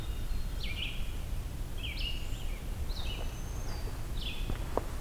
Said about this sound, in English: Really high-pitched birds here too.